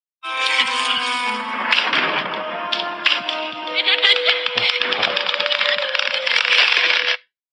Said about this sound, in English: So that's kind of where we were, the window shutters hitting the pane of glass in the rain.